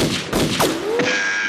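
Rifles being cocked while stalking a stag: three sharp, loud metallic clacks about a third of a second apart, each leaving a brief ringing tone, with no voices.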